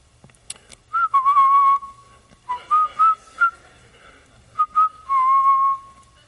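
A cell phone rings with a whistle-like melodic tone, playing three short bright phrases separated by brief pauses, loud and clear with no talking over it.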